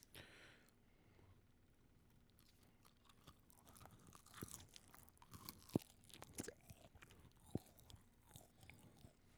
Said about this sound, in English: Can you hear me munching? Yeah.